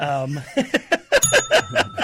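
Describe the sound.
A bright, ringing bell ding sounds over a burst of lively voices and laughter, its clear tone lingering for a moment in the background.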